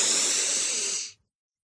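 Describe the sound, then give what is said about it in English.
A single deep, drawn-out sniff, a loud breathy hiss of air lasting about a second before stopping abruptly, with no voices around it. “And he sniffed deeply.”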